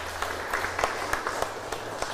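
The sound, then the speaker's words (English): A church audience gives a round of applause to thank the participants of last Sunday's Thanksgiving harvest: a steady patter of many hands clapping with scattered sharper claps poking out, moderately soft and even throughout, with no talking over it. “It's not too late to give them a hearty round of applause again.”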